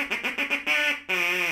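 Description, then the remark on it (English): John the Duck, a bath-time swimming sidekick, quacks loudly: a quick run of short, nasal quacks, then two longer, drawn-out quacks, with no voices. “Our swimming sidekick, John the Duck.”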